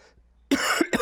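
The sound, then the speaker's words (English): After a brief quiet moment, a person who is smoking coughs hard, one long harsh cough followed quickly by two shorter, raspy ones. “I'm going to have some serious coughing fits today.”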